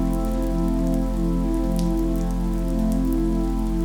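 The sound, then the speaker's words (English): Light rain sprinkles patter steadily on the ground in the mountains as a thunderstorm builds with lightning and rising wind, with scattered soft taps over a constant low hum, moderately loud, with no voices. “The wind is blowing a bit more, and light sprinkles of rain occasionally tap on the ground.”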